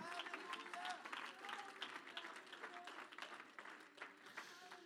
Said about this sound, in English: Oh, somebody give the Lord a hand clap of praise in the house.